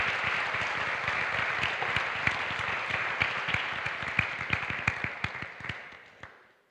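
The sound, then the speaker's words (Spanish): An audience applauds the Lord together, a dense wash of many hands clapping steadily for several seconds, with a few sharper individual claps standing out before it tapers off at the end. “Let's give the Lord a fantastic clap.”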